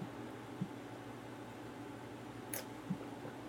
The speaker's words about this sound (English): Hang on. Drink of water.